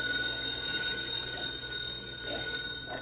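A payphone in a neighborhood drugstore rings around 7 o'clock in the evening with a steady, bright metallic tone that holds for the whole moment, set against a muffled, slightly hissy background with no one speaking.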